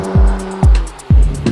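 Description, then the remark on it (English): A powerful car engine rumbles, blipping through three sharp, deep revs in quick, evenly spaced succession over a steady low hum, with no one talking. “How can you think creatively when you're fucking driving a 5,000 horsepower car down LA roads?”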